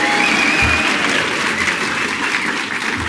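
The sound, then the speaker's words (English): A crowd applauds steadily for about three seconds as a simple public vote, a dense, even patter of many clapping hands at constant loudness, with no speech over it. “Simple public vote by applause.”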